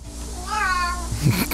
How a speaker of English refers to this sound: But Stevie's cat is sat by his computer microphone, so it sounds and looks like he's responding with cat noises. And it takes a little while for Stevie to realise what the hell's going on.